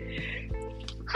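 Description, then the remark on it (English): A single sharp sneeze bursts out at the very end, loud and brief, after a moment of quiet breathy sounds. No one speaks. “Man, bless me. Man, I'm sneezing and yawning.”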